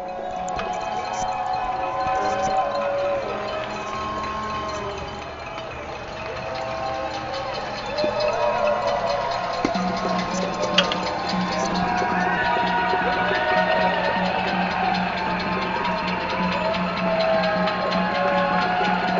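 Many people outside on West 100th Street in New York cheer and clap for healthcare workers at 7 o'clock, a steady, dense wash of crowd noise through a window, with a low engine-like hum underneath and occasional sharp accents.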